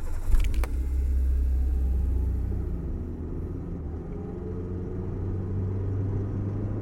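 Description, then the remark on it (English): A car engine turns over with a short burst, then settles into a steady, low rumble as the car drives along, on a trip from Columbus, Wisconsin to Madison. It's continuous, and no one speaks. “He has me get in his car.”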